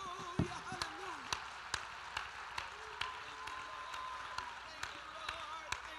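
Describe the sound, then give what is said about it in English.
An audience claps hands to the Lord in a steady, rhythmic beat, roughly two sharp claps per second, over a constant murmur of crowd noise and voices. “If you believe there's power in the name of Jesus, clap your hands to the Lord.”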